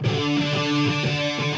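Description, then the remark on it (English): Heavy, distorted metal guitar from a band's recorded track plays a steady run of thick, buzzing power chords and riffs that shift every few beats, filling the whole short stretch at a constant loud level with no voices over it. “I do not like these guitar tones.”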